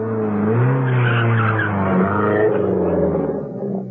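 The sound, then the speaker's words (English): Two cars race up a main road towards the Tarragon Bullring, engines loudly revving and tires squealing in a continuous skid, the pitch rising and sliding throughout before easing slightly at the end. No one speaks. “A short while after that, two cars raced up the main road towards the Tarragon Bullring.”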